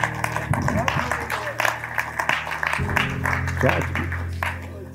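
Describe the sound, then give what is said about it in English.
An audience clapping their hands for God in a dense, uneven burst of claps that runs throughout, mixed with voices and sustained low tones underneath. “Clap your hands for God.”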